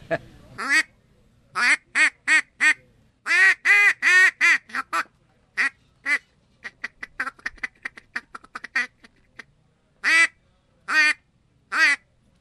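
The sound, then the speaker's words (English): A newly bought duck call, the cheapest one the seller has, is blown in a rapid series of raspy quacks, starting with spaced bursts, then a fast rolling chatter of short notes, and ending with a few loud drawn-out quacks, clear. “Yeah, I can show you another duck call.”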